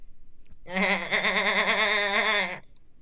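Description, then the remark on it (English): A person imitates a goat with a single long, wavering bleat lasting about two seconds, loud, with a shaky vibrato running through the whole cry. “I don't speak goat, but I'm just gonna assume that's wrong. But I'm the goat, so I do.”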